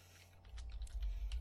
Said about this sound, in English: Dude, I started typing that into Google, and it... Like, I started...